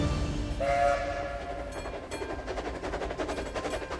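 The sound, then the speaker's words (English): A train bound for Edinburgh, Scotland rumbles along the rails with a steady low roar and rhythmic clatter, and a brief whistle-like tone sounds near the start. No one speaks. “the next morning, 28-year-old Marie boarded the train for Scotland.”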